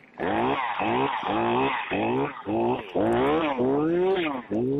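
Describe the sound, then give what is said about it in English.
A voice imitates a sputtering, gurgling chainsaw engine, with a rapid series of about eight pulsing, buzzy bursts that rise and fall in pitch, sounding narrow and telephone-like. “That's a chainsaw, my friend. Listen to the gurgling.”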